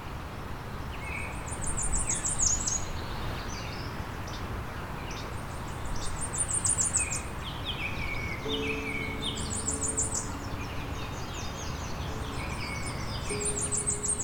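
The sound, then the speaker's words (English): A Cape May Warbler sings very high, thin, repeated series of notes, several phrases spaced a few seconds apart, amid a busy chorus of other birds and a steady outdoor background hiss. “The Cape May Warbler is a dazzling tiger-striped black and white warbler with a dark orange cheek patch that looks unlike any other warbler.”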